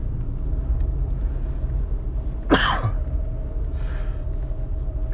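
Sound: sneezing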